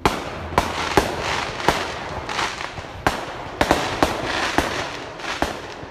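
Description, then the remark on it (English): A rapid, irregular string of sharp fireworks bangs set off around 11 at night, about a dozen loud cracks over several seconds with a crackling, hissy wash between them, with no voices. “I spun around and ran towards the source of the fireworks, hoping to catch the hooligans in the act.”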